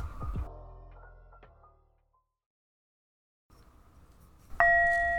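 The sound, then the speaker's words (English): A meditation bell is struck twice during a guided meditation, clear: the first ring fades slowly into silence, then after a soft rustle a second, louder strike rings on with a bright sustained tone. “I'm going to be using a mixture of my different meditation instruments, my tongue drum, my bell, cymbal, singing bowl, and we'll see what happens.”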